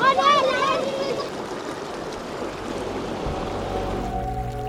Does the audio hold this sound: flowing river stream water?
yes